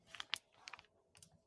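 Rapid computer keyboard typing, a quick irregular patter of sharp clicks in bursts with brief pauses between, fairly quiet overall with no voices.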